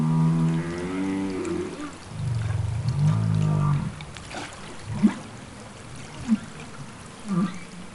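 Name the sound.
humpback whale vocalizations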